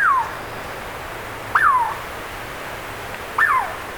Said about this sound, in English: Doesn't that sound like a bird? Actually, we're hearing a Douglas squirrel, a pint-sized chestnut red native of forests from the Sierra Nevadas of California northward to coastal British Columbia and southeast Alaska.